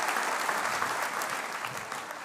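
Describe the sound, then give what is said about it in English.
An audience claps steadily after singing "Jesus Loves Me", a dense wash of many hands at even loudness with no voices over it, sustained for a couple of seconds. “Okay, give yourself a round of applause.”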